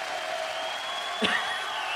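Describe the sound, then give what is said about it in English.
A crowd cheers and claps in a steady, dense wash of noise throughout, with one brief sharper burst about midway. No one speaks over it. “They're already cheering.”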